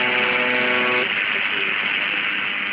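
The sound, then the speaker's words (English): A harsh, droning buzz from the UVB-76 shortwave station sounds over radio static for about a second, then cuts out, leaving steady band-limited hiss for the rest. “This is what UVB 76 sounds like most of the time.”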